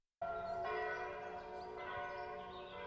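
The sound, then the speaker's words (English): Distant church bells chime a slow Christmas hymn on Christmas Day, December 25, 1863, their overlapping tones ringing and sustaining softly with a few fresh strikes, heard alone with no voices. “Charlie's upstairs, so the study is quiet, except for the distant sound of church bells playing a Christmas hymn.”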